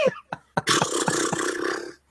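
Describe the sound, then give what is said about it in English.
A person imitates a horse, opening with a few short snorting puffs, then breaking into a long, raspy, quavering whinny that holds loud for over a second before stopping. “Some good horse noises.”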